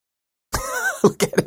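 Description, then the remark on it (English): A short voiced sound is followed by three quick, deliberate coughs into the microphone, loud, coming in a rapid burst with brief gaps between them. “Maybe just bump your mic a few times and cough?”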